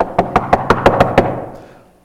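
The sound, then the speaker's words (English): A quick, evenly spaced run of about seven or eight firm knocks on a door, fairly loud, then fading. No one speaks. “you didn't need to knock 3 times.”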